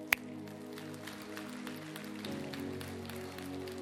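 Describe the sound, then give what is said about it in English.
A crowd claps in a scattered, uneven patter over sustained keyboard chords, with one sharp, loud clap right at the start and steady applause continuing underneath the music. “Well, now don't clap until I tell you what it takes.”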